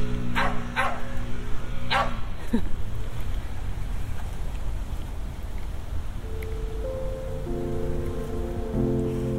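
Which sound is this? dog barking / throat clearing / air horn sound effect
dog barking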